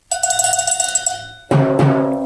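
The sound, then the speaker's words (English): Radio host Michael Savage strikes a cowbell on his show The Savage Nation: a quick run of bright metallic clanks that ring on, followed by two louder, fuller hits near the end. No one speaks. “I have the drums and the cowbells here.”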